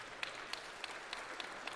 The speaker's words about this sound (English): she's a little nervous, so give her a round of applause. Yeah.